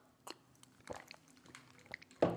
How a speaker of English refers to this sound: Let me grab a sip of water before we get into it, though.